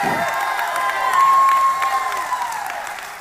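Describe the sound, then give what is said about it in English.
A Pentecostal church audience breaks into clapping and cheering, a dense wash of applause with whoops and raised voices rising together, sustained and fairly loud before slowly easing off. “If you're a Pentecostal church, clap your hands or raise your voice.”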